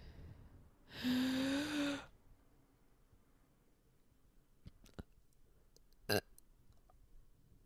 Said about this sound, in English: That was not a burp. That was just me being silly. I just want to know how to fucking burp on command.